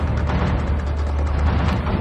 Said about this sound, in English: But sometimes I hit them and you get the little thunder noise like that. We're having a storm outside.